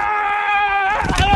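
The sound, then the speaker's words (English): Colts offensive lineman Quentin Nelson lets out a loud, sustained football yell lasting under a second, right before he hits someone. It is followed right away by a burst of rough, noisy crunching like bodies colliding. “Every time he's about to hit someone, he does that.”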